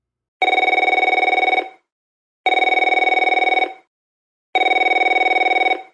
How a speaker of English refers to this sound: The phone rang, and I jumped about 2 feet straight up.